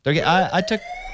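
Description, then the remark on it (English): A brief, loud wailing siren effect, its pitch swooping up and down in a few quick arcs before cutting off and leaving a thin, fading tone. “It's the bias alarm again.”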